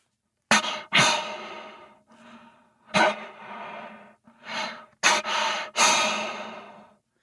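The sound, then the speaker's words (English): A person imitates an angry bull elk's heavy breathing, the sound of a bull angry at another bull: a forceful string of about six raspy huffs and grunting exhales, some sharp and short, others drawn out, with brief pauses between. “So this is more of a heavy breathing noise where he's just pissed off and breathing hard.”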